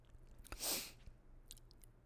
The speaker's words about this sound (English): So while she's thinking, I'm going to take a quick sip of my tea.